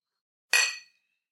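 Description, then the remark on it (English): A single bright clink of glasses touching in a toast, fairly loud, with a clear ringing tone that fades out over about half a second. No voices are heard. “Well, cheers. Cheers.”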